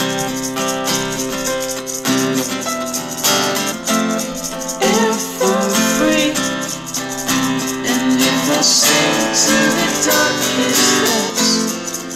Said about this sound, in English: Maracas. Yeah, and it's like not even to the beat, and it's kind of off-putting.